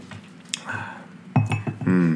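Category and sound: food or drink, sipping coffee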